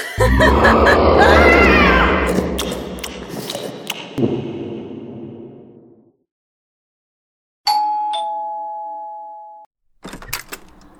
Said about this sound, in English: Why did you ring my doorbell? It said to. What said to? The sign. Here, it says, please ring white doorbell. So I did.